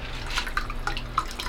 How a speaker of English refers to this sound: I'm going to pour it on the stand. The stand is flat, so it's sturdy. And don't forget there's a shimmer powder in there too.